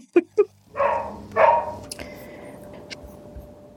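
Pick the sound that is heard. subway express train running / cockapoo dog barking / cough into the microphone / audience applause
cockapoo dog barking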